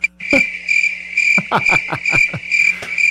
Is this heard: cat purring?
no